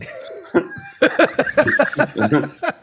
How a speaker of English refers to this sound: Keep that cough to yourself. We're a COVID friendly house here. Yeah, keep that cough to yourself, woman.